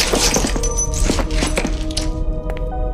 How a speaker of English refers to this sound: From the light, a man came tumbling out and crashed into the floor.